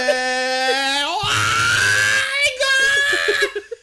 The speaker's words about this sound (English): Meanwhile, during this entire screaming fit, Mikey has prepared a fucking Molotov cocktail, something he knows how to do.